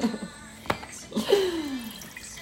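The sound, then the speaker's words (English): A limoncello drink pours into a glass in a short gurgling stream as it is mixed, with a sharp knock just before and faint background noise around it. “Wait, you wanna pour it? No, I was just gonna do it for you.”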